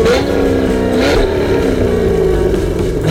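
A loud engine revs, its pitch climbing and then holding in a steady, throaty drone for about three seconds, with no voices present.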